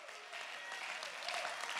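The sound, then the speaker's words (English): A crowd of people clapping their hands together in response to a speaker's call to clap and thank God, a dense steady burst of applause that holds even and fairly loud for a couple of seconds, with no one speaking over it. “Somebody clap your hand and say, thank God I'm in something that's real and true and powerful.”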